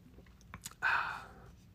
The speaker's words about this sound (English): I'm going to take one more sip here of the Spotted Cow.